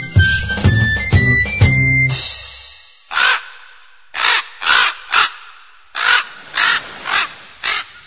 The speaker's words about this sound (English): The raven on his shoulder speaks of dark and evil things.